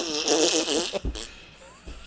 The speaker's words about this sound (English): He also does fart for 15 minutes per episode.